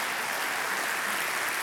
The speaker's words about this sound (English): This would be a really good time for all of you to clap, okay? That's right.